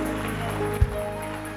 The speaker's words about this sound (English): Can we appreciate God with a clap offering?